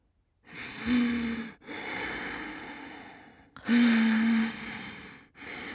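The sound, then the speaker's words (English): A person imitates someone's loud, heavy breathing during sleep: two long, raspy in-and-out breath cycles, each inhale edged with a slight voiced groan, with no other talking. “The breathing was quite loud.”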